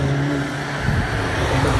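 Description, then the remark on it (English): A car engine revs loudly as it passes by, a steady low growl that rises and roughens midway through, with no talking over it. “Sorry about that. Always one clever dickhead in a car.”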